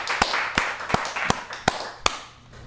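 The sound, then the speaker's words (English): The crew in the room claps to welcome Mike Tyson: six sharp claps land in a steady, evenly spaced rhythm over a soft wash of background noise, with no one talking. “I need everybody in the room to clap it up.”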